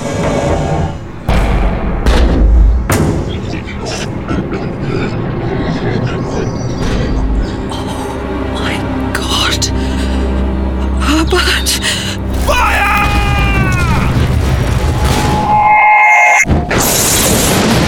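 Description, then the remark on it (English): A loud, sizzling sci-fi heat ray effect: a dense, crackling hiss over deep rumbling thuds, with falling whistle-like tones near the end before it cuts off abruptly. It was made by sound designers for a production still in post-production. “What a sizzling heat ray that really was there.”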